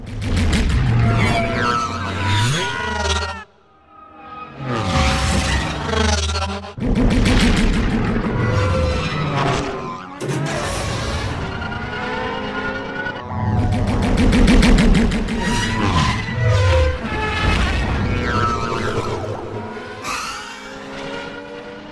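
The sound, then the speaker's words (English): Podracer engines from the film The Phantom Menace scream and roar past in loud, continuous bursts, their pitch whining up and down with rapid buzzing flutter and the occasional sharp boom, with no voices. “The The Phantom Menace, I mean, that is a sound treat, but I think you have to go with the sounds of the pods.”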